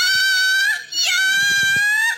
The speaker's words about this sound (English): He's wearing a cat shirt that makes sounds. You got to put the microphone down there or bring the thing up.